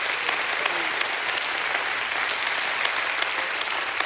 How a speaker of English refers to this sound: And if God, if you had that kind of God testimony, you ought to give him a hand clap of praise.